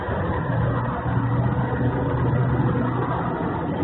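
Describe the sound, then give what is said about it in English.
A car engine revs as the car drives past at a fairgrounds, a steady, fairly loud, continuous low drone with a faint rising hum, holding an even level throughout with no voices; the car comes back around every 2 to 4 minutes. “The car shows are absolutely the worst.”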